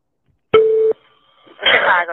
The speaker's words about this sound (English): When you call 911, be careful what you say when the phone is ringing. Why? It is recording during that time. It doesn't start to record when they pick up. It records before. It's always recording.